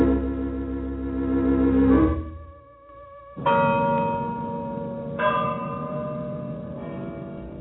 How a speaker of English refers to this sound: The bells tolled in Rome with the passing of this saintly man, each vibration carrying the echo of his long years of defense of the church against its enemies.